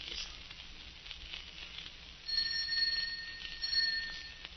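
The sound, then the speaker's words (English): Partway through, a doorbell starts ringing, a bright, steady electric ring that holds for a couple of seconds over a faint, hissy background, with no one speaking. “Answer the doorbell, will you?”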